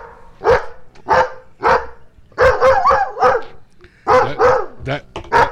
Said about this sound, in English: Dog did not like what he walked in on. But I will say the dog barking clip is almost as long as the boo.